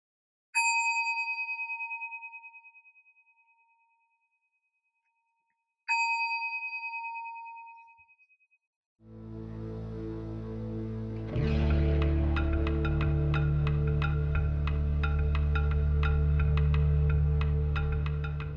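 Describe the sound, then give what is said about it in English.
A meditation bell is struck twice, several seconds apart, each clear metallic tone ringing out and slowly fading before a dense, sustained wash of tones swells in and continues. “I'm going to ring the bell and make a shift.”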